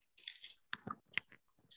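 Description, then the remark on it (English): Dice clatter across a hard tabletop in a quick, irregular run of sharp clicks and knocks, moderately quiet, with no talking; the dice are dropped by mistake and land on 20. “Arcus ran away as soon as you started rolling the dice.”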